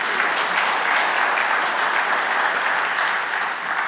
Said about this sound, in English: Can we give Jesus a hand clap of praise?